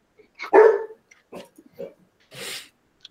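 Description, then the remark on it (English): A guard dog lets out one loud, sharp bark, followed by a few softer, clipped barks and a brief breathy rustle, with no talking. “guard dogs are mm-hmm. Yeah, they keeping them safe. They fire off at the slightest little sound”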